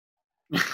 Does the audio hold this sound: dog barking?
yes